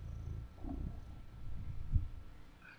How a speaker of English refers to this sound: Oh. Listen to his purring. Shh. Can you hear that?